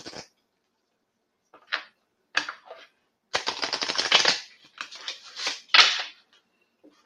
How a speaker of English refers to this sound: so while I'm shuffling, the expectation is that you're going to think about a question. Think about the energy around your question. Think about me shuffling the cards, and we will see what the cards have to say for you.